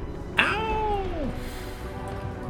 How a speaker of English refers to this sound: Ow! Kitty upset.